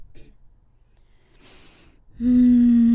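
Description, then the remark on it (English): A single soft, airy breath drawn in through the nose while holding a pose, followed abruptly by a loud, steady droning tone that holds to the end. “The more you breathe like this, the better you're going to feel by the time you're done.”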